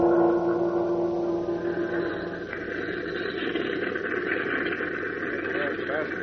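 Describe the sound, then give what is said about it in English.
Clipper airplane engines run steadily at an airport before takeoff, a continuous low droning hum with tonal whine layered on top, holding an even loudness throughout. “Stepping into the clipper now. See, they're getting ready to take off.”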